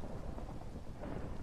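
Steady heavy rain pours down with a deep, continuous rumble of thunder beneath it, a dense, unbroken wash of sound with no voices present.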